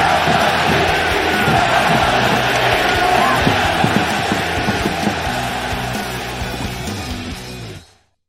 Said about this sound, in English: The crowd getting very loud at the Coliseum.